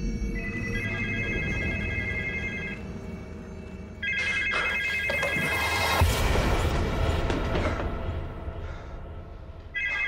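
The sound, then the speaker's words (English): A cordless telephone that is totally unplugged rings loudly in repeated electronic bursts, two long rings separated by a pause and a third starting at the end, with heavy rumbling booms crashing through the middle ring. “And the rings last time the phone's totally unplugged.”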